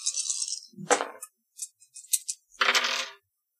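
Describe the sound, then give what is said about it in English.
A handful of seven dice rattle and clatter across a hard surface during a tabletop game: an opening shake, a burst of tumbling, scattered small clicks, then a final rolling clatter, fairly loud with no voices. “Okay, he did roll two twos and a nudge.”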